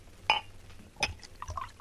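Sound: pouring a drink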